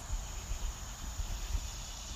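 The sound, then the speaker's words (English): A steady, high-pitched drone of cicadas hums without a break over a soft low rumble of outdoor background noise. No one speaks. “It's almost like the cicadas wanted to let us know they're here.”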